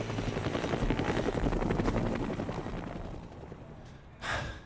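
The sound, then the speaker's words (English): A helicopter's rotor chops rapidly and loudly, a steady rhythmic thumping that fades somewhat toward the end, followed by a brief sharp breathy gasp. “The chopper takes 1 look at me.”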